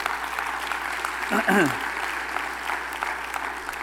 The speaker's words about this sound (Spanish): Un aplauso al Señor.